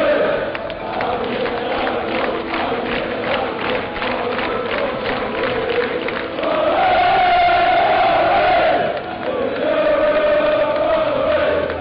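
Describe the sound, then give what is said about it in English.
A football stadium crowd celebrates at the final whistle of Espanyol vs Wolves, which ended 3–2 to Espanyol, with Wolves going through to the round of 16. A loud, continuous roar of cheering swells twice into sustained, tuneful chanting from many voices. “You can just hear what it means to everyone here.”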